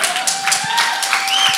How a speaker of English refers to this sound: You can applaud the Lord for that.